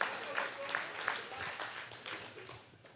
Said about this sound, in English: Somebody else, clap with Brandon if y'all believe that this morning.